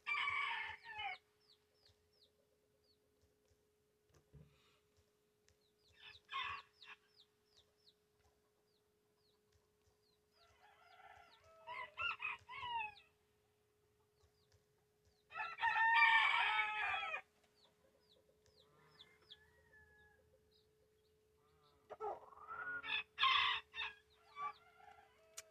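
A chicken crows and clucks in several loud bursts separated by short pauses, with a steady low hum running underneath and no one talking.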